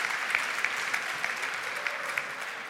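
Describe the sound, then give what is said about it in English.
A crowd applauds steadily as performers head off the stage, a dense wash of clapping with a few sharper claps standing out at irregular moments, holding an even level throughout with no voices. “These guys can give them a round of applause as they head off the stage.”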